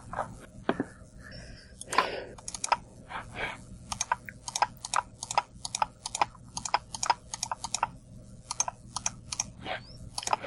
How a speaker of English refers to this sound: I hear much clicking. Hey, that's on my mouse. I was trying to find the certificate store.